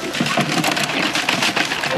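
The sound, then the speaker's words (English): Kunekune pigs crunching and chomping on feed they are being given, a steady, dense mix of gritty munching and rustling that keeps up throughout without pauses, with no voices. “So these little guys, Antonio and Elizabeth, I can't remember which one is which, and they're Kuni Kuni pigs, and we're just going to give them a bit of feed.”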